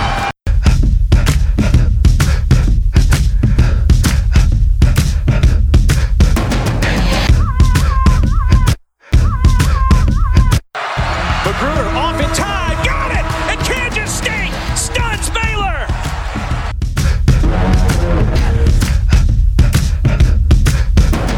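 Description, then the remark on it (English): A loud, dense roar of a huge crowd of fans at Bramlage Coliseum in Manhattan cheering and shouting continuously as they spill onto the court after Kansas State beats Kansas, with whistles and scattered yells rising above it, broken briefly by two short silent gaps. “And fans here at Bramlage Coliseum spilling out onto the court. A huge celebration as Kansas State, for the first time since 1983, has knocked off the Kansas Jayhawks in Manhattan.”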